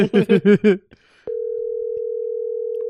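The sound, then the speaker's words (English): A phone's ringback tone: one steady, clear electronic buzz lasting about a second and a half, preceded by a quick run of short voiced syllables and a brief pause. “All right, we're not giving it too many more rings, but we appreciate all of the drink partners for answering the phone and answering honestly.”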